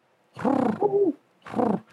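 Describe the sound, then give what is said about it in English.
A pigeon coos in three throaty, rolling bursts, the middle one rising and falling in pitch, with brief silences between and no talking. “Your pigeon friend.”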